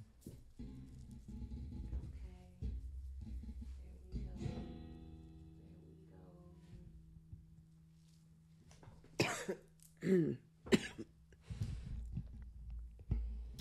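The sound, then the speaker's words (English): A fairly loud cough fit of about three harsh, raspy bursts in quick succession, preceded by low, murmuring vocal sounds and followed by a quieter throaty rasp. “Why did I just cough like that?”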